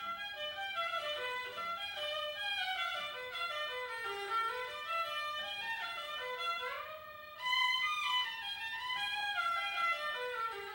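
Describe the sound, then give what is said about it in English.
A musical instrument imitates bird calls with quick chirping slides, trills and warbling phrases, playing steadily and fairly loud with no talking, and pausing briefly before a brighter burst of calls; the player is improvising a new section inserted into a composition. “Now, these are the birds.”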